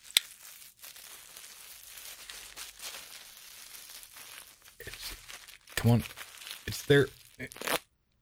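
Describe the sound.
Continuous crinkly rustling and crumpling as hands rummage through a mailbag that turns out to be empty, moderately loud, with a few sharper bursts of crackling and brief voice-like sounds near the end.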